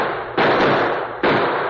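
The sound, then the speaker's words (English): Two loud, sharp gunshots crack out less than a second apart, each followed by a long, echoing roar that fades slowly; no voices are heard. “That critter blame near drilled me.”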